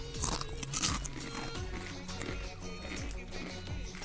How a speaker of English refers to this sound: I have never had a Ruffle kettle chip before. That definitely has the consistency and crunch of a kettle chip.